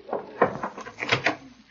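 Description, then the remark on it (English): A door that had been kept locked opens as someone enters, with a short series of clattering, creaky knocks from the latch and hinges spread over a second or two, and no voices. “What's the idea of keeping the door locked?”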